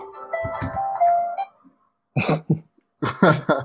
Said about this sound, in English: That's my time to go to bed alarm. Not this night, baby.